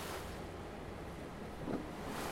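Steady wind gusts buffet the microphone over a broad wash of ocean surf as the wind rocks a small ferry boat off the coast of Ventura, California, by day, with a brief louder swell of water and wind near the end.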